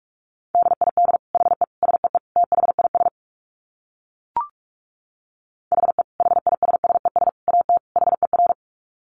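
Very fast Morse code beeps at 45 words per minute in a single steady pitch, sent in two rapid bursts separated by a pause with a brief click. Clear, with no voices.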